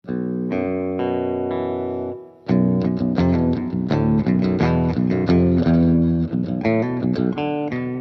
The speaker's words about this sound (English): So here's my guitar through the amp, totally clean.